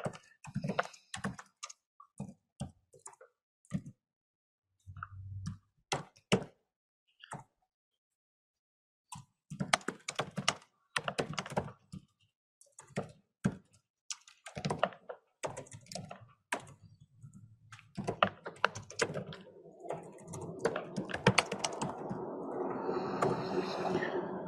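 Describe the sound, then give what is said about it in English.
Rapid, uneven clacking of computer keys as someone types a short note, bursts of keystrokes separated by brief pauses, ending with a steadier rustling wash of sound. “And hold on, let me write a note to Don.”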